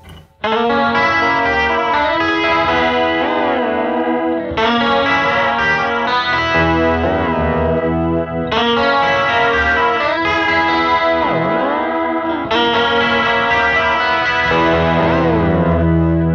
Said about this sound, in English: And you can kind of hear, like, sometimes I would just leave the delay a little bit longer just 'cause. Yeah. That's a fun pedal.